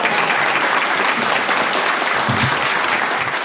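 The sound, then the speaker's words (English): A room full of people at a group meeting applauds, dense steady clapping that sustains at an even loudness throughout, enveloping with a faint murmur of voices underneath. “You can clap now.”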